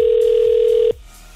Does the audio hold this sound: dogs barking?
no